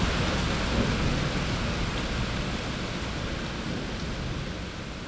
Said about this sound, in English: We'll just see these kind of incredible downpours in this city. When the heat breaks, we'll have really, really hot days, and then suddenly the sky just opens up, and that's what's happening right now.